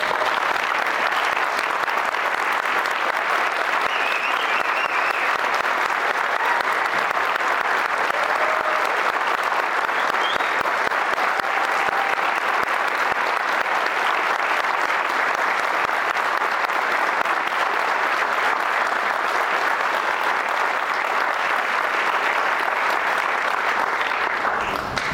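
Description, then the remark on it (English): Sustained applause from a large audience, a dense, steady wash of clapping that holds at an even volume for about twenty-five seconds without any talking, as Indy Achieves students are asked to stand and all are asked to give them a round of applause. “Can we ask them to stand and all of us give them a round of applause?”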